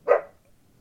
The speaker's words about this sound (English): not my dogs barking. They're probably more entertaining.